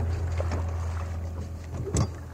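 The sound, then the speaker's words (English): Oars knock in their rowlocks as a rowboat is rowed on Newry Canal, with a couple of soft clunks and a louder one near the end over a steady low rumble of wind and water. “Here we go again. Back into the rowlock and we're away.”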